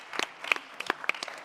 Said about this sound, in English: Oh, yes. I have one. Yes. We have a massive round of applause for this lady.